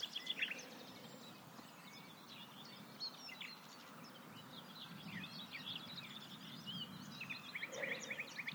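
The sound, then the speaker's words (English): A small migratory pigeon, much smaller than a wood pigeon and only a little bigger than a blackbird, gives a soft, low purring call that rolls on continuously beneath a busy chorus of high songbird chirps and trills, all fairly quiet, with no voices. “They're a small pigeon, much smaller than wood pigeons. Only a little bit bigger than a blackbird.”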